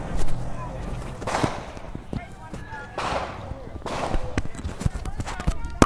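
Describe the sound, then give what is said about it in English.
A rapid, irregular series of sharp gunshots from a drive-by shooting at the George Floyd Memorial cracks out across the whole stretch, some louder than others, with agitated voices and commotion underneath. “These seem to be gunshots.”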